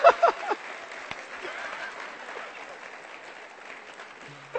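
An audience claps for a guest being introduced, starting with a few loud sharp claps and settling into a steady, dense patter of applause that holds for several seconds before tapering slightly.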